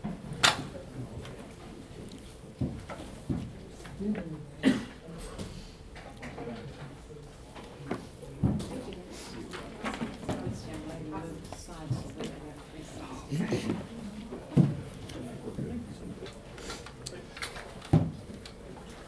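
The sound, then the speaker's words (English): Hymn books being passed out to people in a class: scattered soft thumps, page rustles and knocks at irregular intervals, with low murmuring voices in the background. “So let's pass them out real quick, because mostly we're just going to look at lyrics.”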